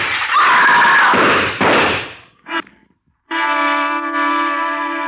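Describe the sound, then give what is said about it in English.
A woman's long, sustained scream rings out loud, starting abruptly after a burst of loud crashing noise and a brief thump, at the Modan Gallery. “It was a woman's scream.”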